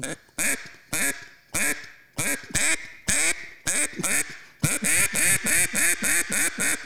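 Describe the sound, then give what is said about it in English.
A duck call blows a loud hen mallard quack sequence: spaced raspy quacks that quicken into a rapid, steady run of about ten more, with no talking. “That is a pure duck. Right? Mm-hmm. It's just a little old live mm-hmm. hen.”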